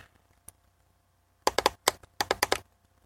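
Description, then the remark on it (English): Crisp mouse-button clicks from a laptop: one isolated click, a pause, then a quick burst of about eight sharp clicks in uneven rhythm, with no talking. “Yeah, and you can hear me clicking the mouse button on my laptop, and this is just getting really, really obnoxiously annoying.”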